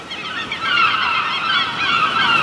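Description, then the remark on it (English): A large flock of seagulls, drawn by spilled corn nuts and dive-bombing, calls all at once in a dense, continuous chorus of overlapping squawks and cries, loud, with no talking. “That's a shit ton of seagulls.”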